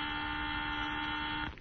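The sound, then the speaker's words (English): A loud, harsh electric alarm buzzer drones steadily for about a second and a half, then cuts off abruptly, leaving only faint background noise. “And somebody turn off that buzzer, will you?”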